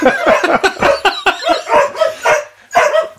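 A dog barks in a rapid, continuous string of loud yaps and yelps, the sharp bursts tumbling over one another with only brief gaps between them.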